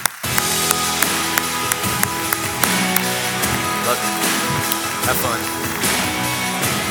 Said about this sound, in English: Come on, let's clap our hands for Jesus one more time.